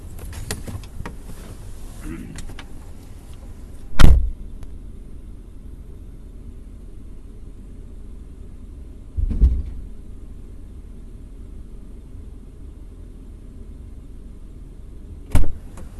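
Inside an idling car on a cold night, a low steady rumble is broken by three sharp thuds spaced several seconds apart, like a car door opening and shutting as someone climbs out to pick up a toaster oven from the curb and gets back in.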